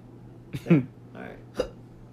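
A few short, abrupt vocal bursts that sound like hiccups, one sharp catch near the start and another near the end, close and fairly clear over a low steady hum.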